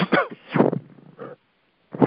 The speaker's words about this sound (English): Excuse me. Wow. Just had a nice little cough there.